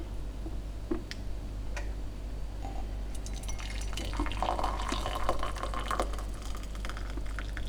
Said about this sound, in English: The kettle is finished. I pour the hot water into the mug, lift, pour, leave to cool.